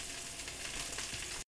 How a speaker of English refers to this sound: now's a good time to check on the sausage. It's sizzling very loud, by the way. Ooh, nice.